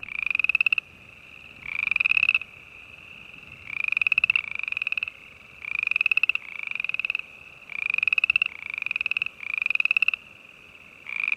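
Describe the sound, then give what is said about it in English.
A chorus of boreal chorus frogs, a tree frog species of Alberta, gives repeated rising, trilling chirps, several overlapping calls in steady succession, loud, with no talking over them. “It's called the boreal chorus frog. It makes the most lovely chirping sound.”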